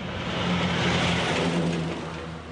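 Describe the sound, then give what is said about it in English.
Logging trucks and milk tankers rumble past on the main street of the town of Putaruru, a loud, steady engine drone with low tones and broad road roar that swells and then eases slightly. No voices. “Back in town at Putaruru, as logging trucks and milk tankers hurtle down the main street”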